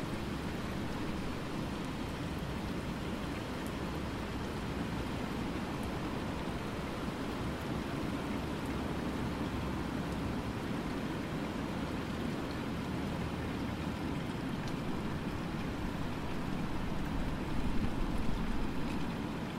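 Heavy rain pours down on a cold winter day, with wind sweeping it almost horizontally at times, in a steady, dense hiss that holds at a constant loudness throughout, swelling slightly near the end, with no voices present.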